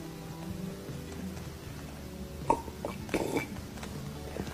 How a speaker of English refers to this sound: Oh, that's a fine big gulp.